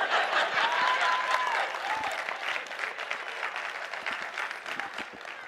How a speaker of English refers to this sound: Right now, yeah, you can clap for that. That's good. That's a good word. That's a good word. I'm gonna get a drink while y'all clap.